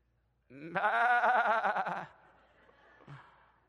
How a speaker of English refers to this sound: And sheep,